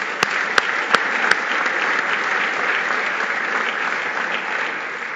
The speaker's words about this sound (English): Our event sponsors are Travelers Canada and Bruce Power Nuclear, as well as our fantastic VIP sponsor, Enterprise. Without sponsors, we simply can't hold these lunches. So let's give them a generous round of applause.